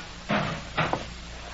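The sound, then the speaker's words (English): A locker door is pulled open and shut as someone retrieves a gun from it, two solid clunks about half a second apart, followed by a faint latch click. “Get me a gun. There's one in the locker right behind you.”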